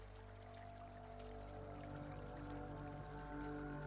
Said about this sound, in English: And suddenly, you notice how it starts to rain. It is a very pleasant rain, and the fallen water feels at a pleasant temperature.